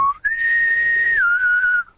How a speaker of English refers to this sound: Yeah, get a bosun whistle. That's what you need.